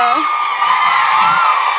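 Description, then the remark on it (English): A large live audience cheers and screams loudly in a conference room in Las Vegas, a dense wall of overlapping whoops and yells continuing for the whole moment. “When was the last time this conference room had this many screaming people in it?”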